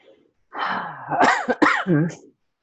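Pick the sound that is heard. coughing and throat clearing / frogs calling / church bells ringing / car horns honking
coughing and throat clearing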